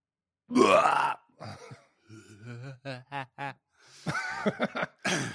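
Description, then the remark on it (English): A loud burp erupts, followed by a run of short rhythmic chuckles and then some brief vocal sounds. “Did you hear me burp?”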